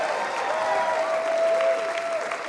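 A crowd claps for Jesus steadily for the full stretch, a dense, even wash of many hands with no breaks, while a thin sustained tone rings faintly through the middle.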